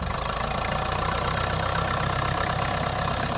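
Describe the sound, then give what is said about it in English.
A 1955 Case 400 diesel tractor engine idles steadily in Kansas, a loud, even low rumble with a rapid rhythmic knock and no voices. “This is a 400 case, 1955, 400 case diesel.”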